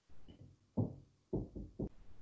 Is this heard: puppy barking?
no